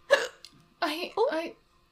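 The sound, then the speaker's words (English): A single sharp hiccup pops out at the start, followed by a short pause and then a person speaking a couple of quick words. “Hiccups. Sorry.”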